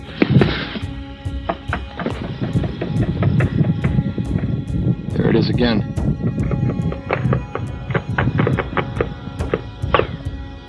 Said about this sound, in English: Ricochets, sounds like automatic fire.